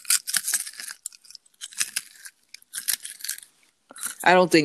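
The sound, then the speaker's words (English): Crisp crunching of Garrett's popcorn being chewed, coming in several loud bursts with short pauses between, followed by a brief voiced sound at the very end. “I'm going to give our fans a little ASMR of Garrett's popcorn Okay. and the deliciousness that is crunching in my mouth.”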